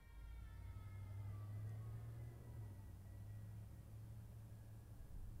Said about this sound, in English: What was that? Might be my car. Why would your car make that sound? I don't, it's making a whirring sound lately. Sounds like a crazy sound. One of the components is going bad